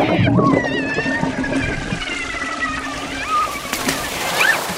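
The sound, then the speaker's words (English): A sudden wet splash bursts out at the start, followed by a few seconds of cytoplasm gushing and sloshing out of a cell being cut into, with faint whistling, squeaky tones running underneath. “But please brace yourself because all of that cytoplasm is going to gush out.”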